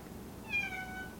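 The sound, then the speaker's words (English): A single drawn-out meow from a cat called Miss Kitty, slightly descending in pitch, moderately loud over a low background hum, with no talking. “Oh, there's Miss Kitty. Perfect. Perfect timing there, sweetie.”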